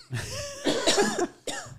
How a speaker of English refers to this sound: Oh, wait, should I cough too?